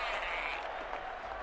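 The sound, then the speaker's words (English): A large crowd roars and cheers at a steady, loud level, many voices blending into one dense wall of sound that fills the whole moment without pause. “The crowd cheers deafeningly.”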